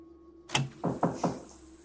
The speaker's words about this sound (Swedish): Ja, kom in. Dörren stängs och förhöret börjar.